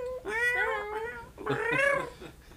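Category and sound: vocal imitation, person imitating cat noises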